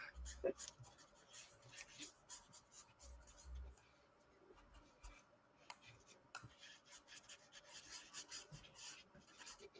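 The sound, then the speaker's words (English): Steady scratchy strokes of a pen or pencil moving across a small paper pad, fairly quiet, with irregular bursts of rubbing and scraping throughout and soft low thumps now and then. “I mean, I do really like this paper I'm using.”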